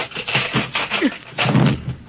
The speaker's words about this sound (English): Tin Man, your axe chopped on the door.